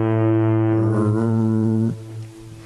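A deep, loud foghorn blast drones steadily for about two seconds, rich and buzzing, then cuts off and leaves a brief fading tail. No voices accompany it.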